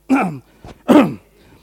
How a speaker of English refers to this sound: Sorry, I just coughed here.